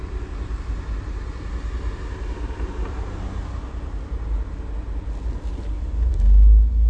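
A steady low engine rumble of a car on the street, with traffic noise throughout, swelling louder near the end as a vehicle passes. No one speaks.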